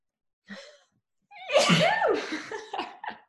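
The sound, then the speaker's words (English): A quick, shallow intake of breath, a short pause, then one loud sneeze bursting out with a voiced, wavering tail that sputters off into a few breathy aftershocks. “oh, I'm going to sneeze.”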